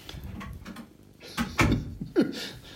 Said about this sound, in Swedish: Nu, förlåt, jag stängde dörren. Nu stänger hon till dörren också